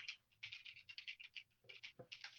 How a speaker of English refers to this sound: I'm typing it to be sure.